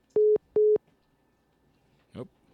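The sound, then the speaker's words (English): Two loud, steady electronic tone bursts of a phone busy signal after a call disconnects, evenly spaced, followed after a pause by a brief murmur of a voice. “All right, guys, well, we had a little technical difficulty, just like I was mentioning earlier, and we had a phone disconnection there.”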